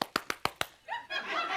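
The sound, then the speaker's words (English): Five loud, sharp hand claps in a quick, even rhythm, each a crisp smack, clapping hard to show being mad, followed by voices and what sounds like laughter. “He can't say what he want to say, so he just clap real hard.”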